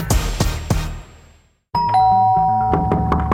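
Three sharp knocks on a door in an even rhythm, a short pause, then a loud, sustained ringing chime like a doorbell with steady tones and a few further taps.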